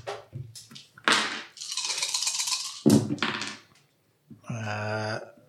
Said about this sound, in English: Yeah. I'm sorry, I'm rolling 2 dice.